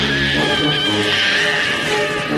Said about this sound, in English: But I love when Billy chops his head off and you hear it. Several times in the movie, there's a weird cat yelping sound, like, you know?